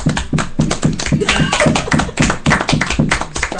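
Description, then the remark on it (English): A small group of audience members at Medway Studios in Medway, Massachusetts claps steadily, a dense patter of overlapping handclaps at a fairly loud, even level throughout, with no voices on top. “Go ahead and give yourselves a round of applause for being here.”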